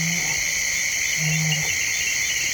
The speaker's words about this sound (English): The nighttime world along the forested River Mara is wide awake with giant flying insects, chirping bats, chiming frogs, and the occasional hungry hippo.